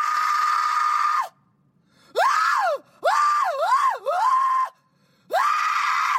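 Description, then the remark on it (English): A woman screams in four loud, high-pitched bursts separated by short silences, her voice swooping up and down in wavering arcs, with no talking. “whose scream was heard around Davistown just minutes after Bonnet disappeared”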